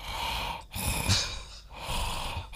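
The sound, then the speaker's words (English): Heavy, raspy breathing in slow cycles, a long rough inhale and exhale repeating about three times. A voice imitating an ominous, mechanical sci-fi breath, with no speech. “Yeah, and that's actually my breathing voice after 2 vaccinations.”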